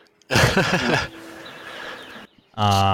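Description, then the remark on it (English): A pet bird squawks and chirps loudly, a burst of warbling calls, a short pause with a faint hum, then another sharp harmonic cry. “I can hear your bird.”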